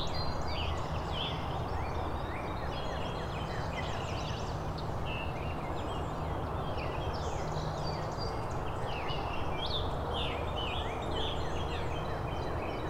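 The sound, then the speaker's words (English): A busy dawn-chorus of birdsong, with a northern cardinal singing loudly over a scarlet tanager perched directly overhead and many warblers, overlapping phrases and chips filling the whole stretch without pause. “So the northern cardinal and scarlet tanager singing. Cardinal is louder.”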